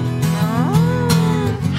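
animal, cow mooing

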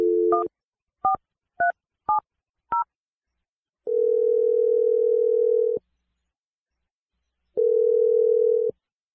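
signal or alarm, telephone dial tone

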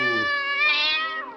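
animal, angry cat yowling

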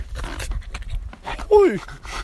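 animal, dog barking and panting

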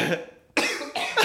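human body sound, man coughing

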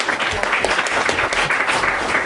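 crowd, audience applause

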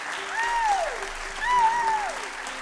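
crowd, concert audience applause

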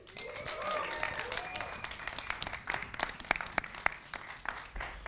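crowd, audience applause

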